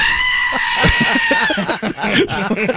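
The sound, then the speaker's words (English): A goat lets out a long, strained, high-pitched bleat that lasts over a second, loud, while people stranded at the roadside in snow talk in the background, recorded through a rolled-down car window. “Somebody had a goat.”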